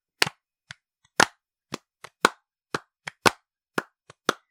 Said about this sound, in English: Okay, the second ingredient will be clapping our hands.